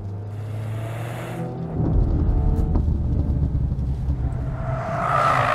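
A performance car's engine drones in a steady tone on a racetrack in heavy rain, with water streaming across the track, then bursts into a loud, rumbling roar with a broad hiss like tyre spray, building again toward the end. No one speaks.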